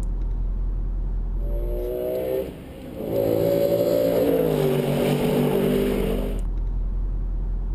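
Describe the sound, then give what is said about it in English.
A normally aspirated 6.3-litre V8 sports car engine accelerates hard, a short rising pull, a brief dip as it shifts, then a longer, louder surge climbing in pitch before cutting off. “It's a 6.3-litre V8, normally aspirated.”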